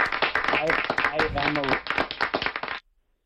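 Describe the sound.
A burst of applause, dense overlapping claps going steadily for almost three seconds, with voices talking over it before it cuts off sharply into silence.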